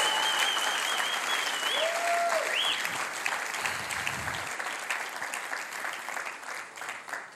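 A crowd applauds steadily, the dense clapping holding strong before easing slightly toward the end, with a few faint whistle-like tones and cheers rising briefly in the first few seconds.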